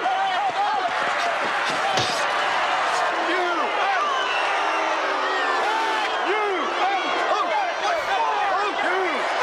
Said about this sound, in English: Ah, yes, the … getting booed